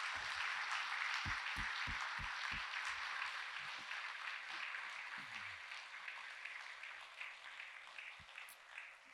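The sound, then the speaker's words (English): Steady applause from a church audience for a retiring church office worker, a dense wash of many hands clapping that holds fairly even for several seconds before gradually thinning out, with no voices heard over it. “But I wanted our church to give her a round of applause”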